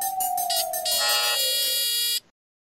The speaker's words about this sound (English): guess maybe that is a buzzer.